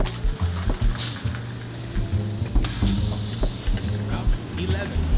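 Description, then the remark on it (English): A Detroit Department of Transportation city bus on Detroit's west side rumbles up with a deep, steady engine drone, broken by a couple of sharp hissing bursts of air brakes as it comes to a stop. “He's on the city's west side waiting on the Detroit Department of Transportation bus. Okay, I see it.”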